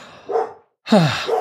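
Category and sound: animal, dog barking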